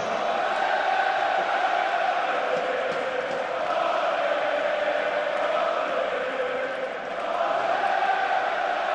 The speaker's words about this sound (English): Yeah. Pretty strong ovation from everybody in Montreal right now.